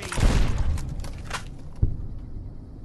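Heavy, booming 40mm grenade explosions in a video game rumble at the start, trailing into crackling debris, followed by a second sharp blast partway through, all loud with strong low-end thump.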